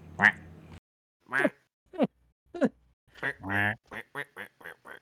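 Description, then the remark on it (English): A voice imitates seagull calls in a series of squawky, nasal cries: a few spaced calls, then a quicker burst of short ones near the end, fairly loud. “downtown, walking fast. I'm a seagull.”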